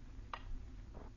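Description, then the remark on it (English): Two soft, evenly spaced clock ticks, roughly two-thirds of a second apart, over a low steady hum in otherwise quiet surroundings. “You make a pretense of being quite busy, but your eyes keep wandering to the clock.”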